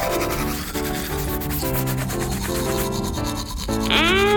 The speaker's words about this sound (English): Okay, pirates, everyone have a toothbrush? Toothbrush case. Ready, set, brush!